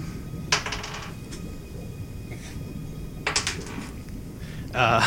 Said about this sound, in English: As he rolls 2 dice. Yeah, so the first one, I rolled a 2.